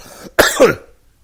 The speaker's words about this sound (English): I apologize for the coughing. I'm still getting over being sick.